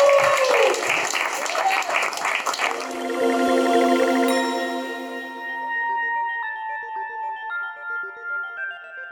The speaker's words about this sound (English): Round of applause